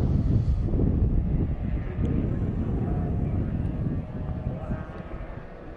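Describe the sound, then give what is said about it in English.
Race cars, including Porsches, roar past behind a pit car before the racing begins, a steady, loud, low engine rumble with a faint higher whine, easing slightly toward the end. No one speaks. “It's a high whine pitch for the Porsches. That might have been the last of the cars.”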